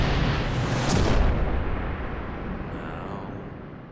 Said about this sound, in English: We always have explosions.